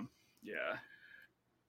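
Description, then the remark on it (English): A single short, rough cough from a person with COVID bursts out and trails off into a brief hum before quiet returns. “But apologize for the coughing.”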